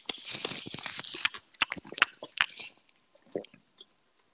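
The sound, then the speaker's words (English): Crunchy chewing, a dense run of crisp bites at first that thins into a few scattered crunches before trailing off. “Are you chewing your pills?”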